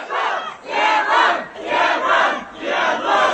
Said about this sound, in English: In the northwestern city of Urumqi, videos posted to social media show crowds shouting, "Remove the lockdown."